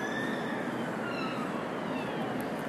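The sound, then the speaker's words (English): A faint ambulance siren wails thinly over a steady rumble of traffic noise, its high tone slowly sliding in pitch. No one speaks. “And what I've also noticed is there's a little ambulance in the background.”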